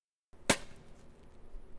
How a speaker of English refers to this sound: It's 11 a.m. on a Wednesday morning in Howard Park, and the sounds of people smashing scales fills the air. Yes, that's right, scale smashing.